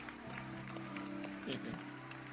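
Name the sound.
audience clapping hands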